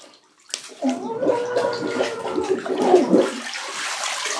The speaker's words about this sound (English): Okay, now I'm gonna dunk my head under the water. All right, here we go. I'm gonna scream as loud as I can while I'm underwater.